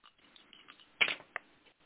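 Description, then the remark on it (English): A quick clattering rattle of dice tumbling onto a hard surface, with a louder burst of clicks in the middle and one sharp tap after, with no talking. “I'm going to roll the dice see if I can learn about you, the Quarant, and what's going on as you as an individual.”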